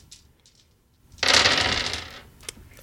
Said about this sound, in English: And then that is 3 plus 3? Yes, so you're going to roll 6 dice.